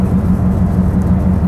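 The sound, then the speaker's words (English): Steady, loud low rumble of a car's interior, a constant engine and road drone with a faint humming tone running throughout and no voices. “But I hope y'all was able to hear me through this loud ass car.”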